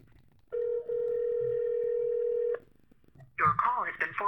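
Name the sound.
phone call dialing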